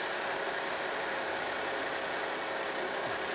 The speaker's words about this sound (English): So what we have, which is pretty common, if you've got an Audi, guys, this is actually, this engine is sucking in vacuum, and it's not quite acting up, but it would actually, see how it just sucks that dipstick in?